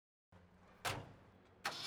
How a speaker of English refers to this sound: She got in the truck and started it up.